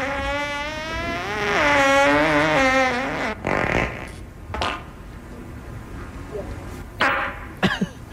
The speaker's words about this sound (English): as soon as the fart was coming up, Ellie put both hands up in the air